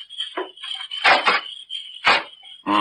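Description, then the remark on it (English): The handle and lock of a house door are jiggled and tried, giving a few sharp metallic rattles and clicks in short bursts over a steady high background hum; the door turns out to be unlocked. “I just want to know before I try to open the door.”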